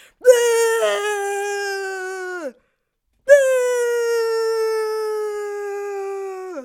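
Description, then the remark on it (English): A person's voice imitates a weird, eerie, Voldemort-like scream: two loud, long, steady high-pitched wails, each sliding down at the end, separated by a brief pause. No words are spoken. “He just does some like weird Voldemort sounding screaming.”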